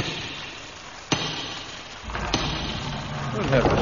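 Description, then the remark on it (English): Two heavy, separate knocks on a door in pouring rain, about a second apart and sharp, over a steady background hiss with a low rumble that rises toward the end. “Knock at the door.”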